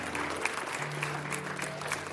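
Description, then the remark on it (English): A crowd claps steadily for those who made a decision, a dense stream of overlapping hand claps with no individual beats standing out, sustained at an even level throughout while a low tone hums underneath. “Can we get a lot of hand clap for those who made a decision?”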